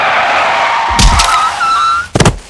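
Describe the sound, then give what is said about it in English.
A car skids with a sustained, loud tire squeal, broken by heavy thuds near the start and again near the end, and no one speaks. “Whoa, a car.”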